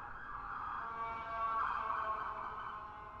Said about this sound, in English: Oh, here we go. Ambulance.